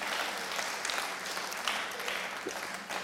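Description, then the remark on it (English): An audience claps together in a steady, dense wash of overlapping hand claps that holds at an even level throughout, with no voices standing out. “Yeah, let's give him a clap.”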